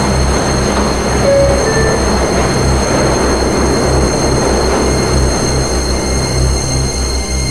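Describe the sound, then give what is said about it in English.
A Queens-bound E subway train running via the F line, next stop 42nd Street–Bryant Park, rumbles loudly and steadily, with a deep low drone, a constant rushing roar, and a few brief high metallic whines early on. No one speaks. “Is a Queens-bound E-train via the F line. The next stop is 42nd Street, Bryant Park.”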